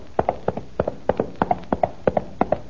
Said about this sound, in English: I see Don Diego's horse approaching.